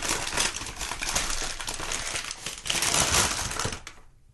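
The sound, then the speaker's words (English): Dense, continuous crinkling of a paper bag holding a birthday gift, a bottle of W.L. Weller Special Reserve bourbon, being handled and opened, a steady rustle of crisp crackles with brief louder bursts before it stops abruptly. “Sorry about the not quite wrapping on it, but here you go. Yeah, thank you. It's in a paper bag.”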